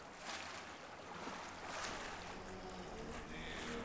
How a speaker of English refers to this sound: The water grew very still and barely lapped the side of the boat.